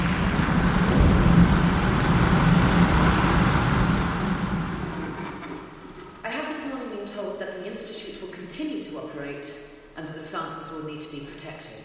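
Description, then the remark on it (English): Steady, dense rain hisses loudly for about five seconds, then fades into a quieter background as people begin talking over it. “I need to sit and think and not be in the rain.”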